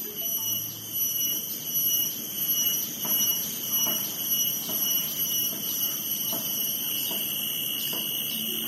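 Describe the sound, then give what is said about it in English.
Cicadas buzz in Singapore at midday under cloudless blue skies, a continuous, shrill, high-pitched drone that holds steady from start to finish at a fairly loud level, with no voices present. “Because those are cicadas.”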